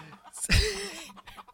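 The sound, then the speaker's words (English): A single chicken squawk from a sound-effect button bursts out loudly, then trails into a short drawn-out cluck before fading, with no talking over it. “And the fact that we're going off on pressing the chicken button is worthy of another chicken on the chicken button.”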